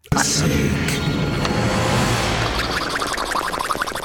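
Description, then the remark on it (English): A dense, loud rumbling wash gives way to rapid, uneven gurgling pops of someone blowing bubbles through a straw into a Yoo-Hoo drink, with faint rattling clicks of bones rattling together mixed in during the final seconds. “That's someone putting a straw into a Yoo-Hoo and, like, blowing bubbles.”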